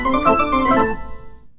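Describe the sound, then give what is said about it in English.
A telephone rings once on the line during an outgoing call, a bright, buzzy tone lasting about a second before fading away. The ring is fairly loud, with no voices present. “I have to go make a phone call.”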